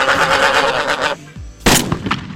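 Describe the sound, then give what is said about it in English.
A single loud gunshot cracks out sharply, its burst trailing into a brief rough decay, following a dense, noisy wash of sound that drops away just before the shot. “No, I would never shoot at sheep.”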